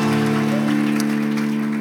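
An audience claps steadily, a dense, even wash of applause that holds at the same level throughout, with low sustained musical tones humming underneath.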